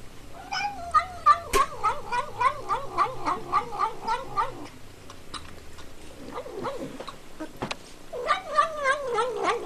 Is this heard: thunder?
no